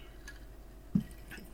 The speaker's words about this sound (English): Yeah, sorry. Pardon me while I have a drink. Yeah. To Kessler.